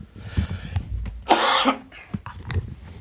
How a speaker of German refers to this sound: Sekunde, ich huste mal kurz.